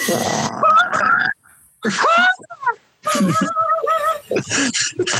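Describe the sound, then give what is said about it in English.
A person imitates a bird call with their voice, making several bursts of warbling, rising chirps and squeaks separated by short pauses, fairly loud and with no other talking. “Are you trying to distract the cat with a bird noise, or is that just your call?”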